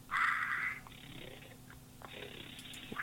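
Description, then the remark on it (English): Raspy, heavy breathing comes through a muffled, band-limited phone line: a loud burst at the start, then quieter hissing breaths over steady line static, with no one talking. “It sounds like someone's breathing into the phone.”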